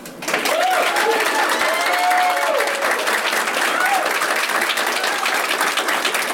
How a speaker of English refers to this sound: Okay, well, I'm going to leave this up to the audience. By applause, please applaud for the person who you think said things most wrong.